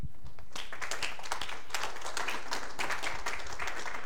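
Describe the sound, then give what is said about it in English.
An audience at a morning gathering at Grace Spring breaks into applause as a speaker is invited up to share a message, after a brief quiet start, a dense, steady patter of many hands clapping at once that holds at an even level to the end. “Don't clap yet.”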